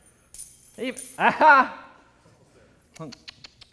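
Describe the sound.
A bunch of keys jangles in short metallic bursts, the brightest clinks near the end, while a voice talks in the first half; the bunch holds keys to a house in Mesquite, a key to the church at Northgate and a key to a mother's house.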